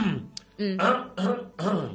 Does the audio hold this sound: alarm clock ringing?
no